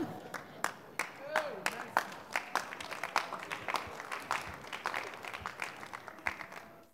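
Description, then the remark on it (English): An audience claps steadily for several seconds, a dense patter of sharp hand claps, with some faint voices mixed in beneath. “You saw any woman clapping?”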